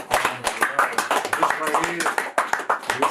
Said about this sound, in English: With that being said, man, you know, we going to wrap it up, man. Let's clap it up. Everybody in here.